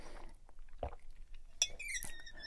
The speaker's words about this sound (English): So I'm gonna take a sip of my water and then continue with movement stuff.